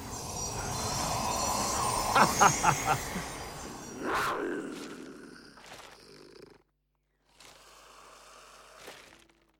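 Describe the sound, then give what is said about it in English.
Train engines rumble as they draw near, with a quick series of clanking bursts and sharp hissing blasts, then a brief silence before fainter rumbling and hiss return. “Ah, the engines are coming.”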